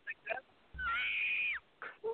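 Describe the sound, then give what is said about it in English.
A voice imitates the bloodcurdling yell of pain a wrestler let out when he fell: one strained, high-pitched cry held for under a second, framed by brief bursts of vocal sound before and after. “fell, he let out this blood curling like yell.”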